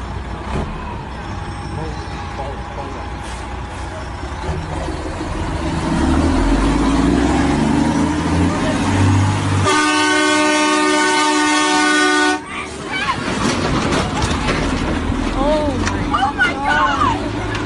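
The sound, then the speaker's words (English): A heavy livestock truck carrying about 300 stacked animals rumbles closer at a slaughterhouse, its engine noise swelling loudly, then a long blaring air horn sounds for a few seconds amid background voices and street noise. “Here we have the truck approaching where approximately 300 animals are stacked into this truck.”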